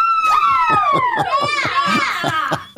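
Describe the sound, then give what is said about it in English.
A crowd screaming loudly and continuously, with many high-pitched voices wailing and sliding together in an overlapping shrill roar, pulsing slightly, then a brief extra burst at the end. “That's a lot of screaming.”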